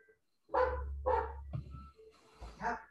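A dog barks loudly, two sharp barks in quick succession, then a short pause and another bark, with a low rumble underneath.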